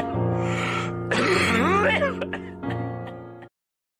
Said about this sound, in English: The coughing gets me every time. Every week. It gets me every time.